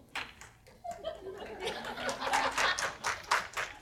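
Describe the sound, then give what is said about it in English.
A few scattered, half-hearted claps, a pity clap, ring out in an uneven rhythm, mixed with soft chuckling and murmuring voices, fairly quiet throughout. “Okay, that's like a pity clap.”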